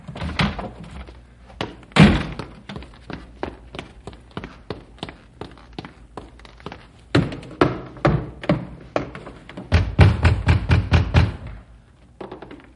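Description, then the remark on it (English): Loud, insistent knocking on a house's front door in the middle of the night: rapid clusters of sharp raps with short pauses, building to a heavier flurry of pounding near the end. No one speaks. “Come on, come on, open the door.”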